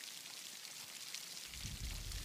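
Steady rain falls outside a tavern, The Happy Hog, with a dense, hissing patter across the whole clip, and a deeper, rumbling wash of heavier drops swells in during the second half.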